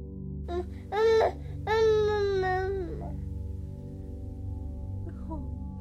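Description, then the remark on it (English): A baby boy says "mama" in a whiny, crying-like voice: two short syllables and then a long drawn-out one, followed by quiet with a low steady hum underneath. “Lilia listened to him say mama.”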